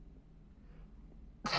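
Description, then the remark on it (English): A single sharp, loud sneeze bursts out near the end, after a stretch of quiet low background rumble with no talking. “Oh, cut that sneeze out.”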